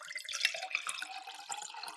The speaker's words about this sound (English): Let me just pour my herbal tea right now. I'm just going to get my tea ready.